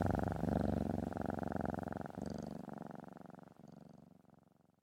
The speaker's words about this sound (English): I fell asleep to the steady rumble of his purring as the fire in the fireplace slowly waned to embers.